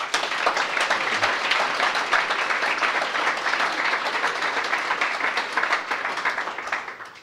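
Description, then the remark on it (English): A sustained round of applause for two men, many hands clapping in a dense, steady patter that stays loud for several seconds before tapering slightly at the end. “Uncle Paul Callaghan, and round of applause for both men, Uncle Paul Gordon.”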